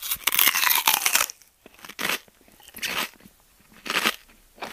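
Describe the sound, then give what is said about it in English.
A loud crunching bite into a coconut, followed by several rhythmic chewing crunches of the coconut with brief pauses between them, with no talking. “Break open the coconut and take a bite. Chew the coconut using all of your facial muscles.”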